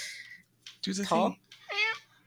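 A cat named Lunchbox meows a few times, drawn-out rising and falling cries with short pauses between, fairly loud.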